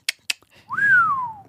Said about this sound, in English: Did he ever whistle at people? He whistled at people.